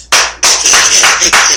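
Loud, brisk hand clapping fills the short stretch, a dense run of sharp claps that swells in a few bursts with brief dips between, and no voices.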